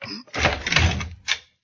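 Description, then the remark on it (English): A locked backstage door is forced open with a loud crashing burst and heavy thud, followed by a shorter second bang before it falls quiet. “It's locked. Well, I have to break it in.”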